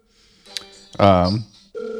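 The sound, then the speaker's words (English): An electronic work phone ring of sustained, steady tones, rising to a louder, richer burst midway, then a brief pause before the ringing resumes, fairly loud. “The Work Phone Rings”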